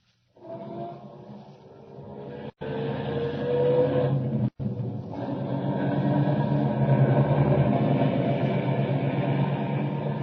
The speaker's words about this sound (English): Start up the car.